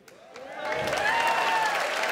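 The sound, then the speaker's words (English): An audience breaks into applause, building quickly from a few scattered claps into a steady, loud wash of clapping with some faint cheering mixed in. “You idiots will clap anything.”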